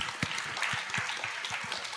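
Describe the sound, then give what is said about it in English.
A crowd claps steadily for a speaker named David after his talk on hospitality, a dense patter of many hands with a few sharper individual claps standing out, at moderate volume without any voices on top. “Well, if you join me in a big round of applause for David, that was excellent.”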